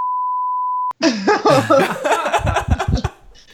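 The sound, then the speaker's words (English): A flat, steady censor beep covering an inappropriate joke lasts just under a second and cuts off abruptly, followed immediately by loud laughter from people. “We'll beep it out.”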